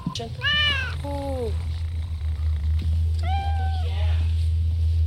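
A cat meows three times in quick succession, loud and close, with drawn-out harmonic yowls over a steady low hum in the background.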